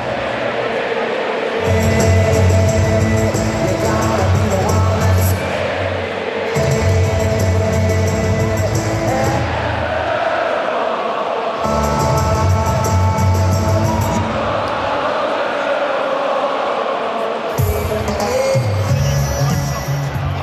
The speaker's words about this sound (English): I'm going to shut up for a second. Let's take this in, because the crowd are going to sing the living daylights out of it. Here we go.